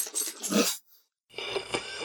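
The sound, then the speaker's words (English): An air conditioner running with a steady, airy whoosh and a faint tonal hum underneath. It drops out briefly for about half a second, then comes back at a similar moderate level. “Of course, my air conditioning kicks on right then, too.”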